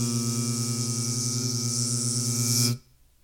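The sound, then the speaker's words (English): Voices hum a loud, steady buzzing drone in imitation of bees, holding for nearly three seconds before cutting off abruptly into near silence. “This podcast is sponsored by bees. Yeah. Save them. Buzz. Buzz, buzz. I thought we were going to harmonize. Buzz.”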